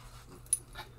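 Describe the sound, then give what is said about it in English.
A puppy gives a soft, brief, faint whimper, with a quick metallic clink just before it and a low steady hum underneath. “Opening night, puppy. Say something. That's good.”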